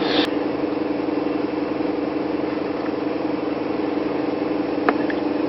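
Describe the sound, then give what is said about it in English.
The engine of an old car idles while warming up, a steady, low hum that runs continuously, with a faint click or two over the constant mechanical drone and no voices. “Old cars are the shit. They really are. Take a long time to warm up, though.”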